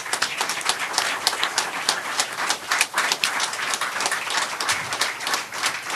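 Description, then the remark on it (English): An audience applauds the people of the People's Forum, dense overlapping claps at a fairly loud, even level throughout, with no voices rising above it. “Would you please give a round of applause for the people of the People's Forum?”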